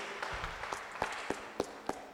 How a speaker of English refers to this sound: Put our hands together for Amen. The Lord. Que l'on applaudisse, please.